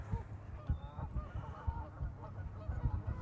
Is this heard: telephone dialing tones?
no